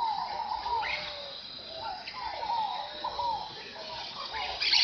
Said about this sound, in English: At sunrise, the River of the Dead comes alive with the sound of birds. Toucans, flycatchers, parakeets, antbirds, pygmy tyrants, and macaws all vie for attention. There are over 800 species of birds in Mato Grosso.